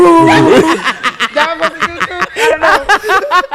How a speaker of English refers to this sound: That dog was crying. Your dog was confused. He didn't know where to go.